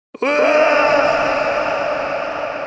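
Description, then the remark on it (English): A voice lets out a long, sustained wailing scream, imitating a huge cosmic cry; it starts abruptly, holds a strained pitch with rich harmonics, and fades slightly over nearly three seconds. “He makes out this intergalactic scream.”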